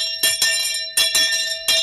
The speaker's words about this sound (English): I said, I'm going to ring bell for her now.